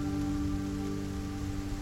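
Steady rain falling on the ground, a dense, even hiss of drops with no pauses, fairly loud, along with a faint low hum underneath. No one speaks.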